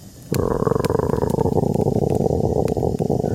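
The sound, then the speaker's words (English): A person imitates a wolf with a low, rough, rumbling growl that starts abruptly and holds steadily for about three seconds, loud, with no other talking, voicing a child raised by wolves who growls in reply when offered a name. “He was raised by wolves. We shall call him Charlie. Charlie? Would you like a name? And he just growls at you.”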